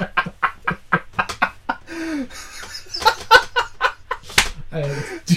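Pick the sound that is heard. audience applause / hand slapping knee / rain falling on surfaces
hand slapping knee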